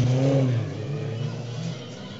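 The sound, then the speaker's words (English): The number 62 Porsche Cup race car, with purple, yellow, green and black livery, passes underneath the speaker on a race track, its engine roaring at high revs, loudest at first, then its pitch drops and the sound fades quickly as it moves away. “62 car passes underneath me, one of the Porsche Cup cars, with, a multicoloured purple...”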